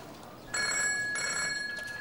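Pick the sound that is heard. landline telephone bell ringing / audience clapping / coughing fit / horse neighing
landline telephone bell ringing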